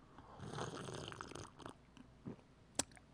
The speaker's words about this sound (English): And I will leave you time to do that while I sip my coffee.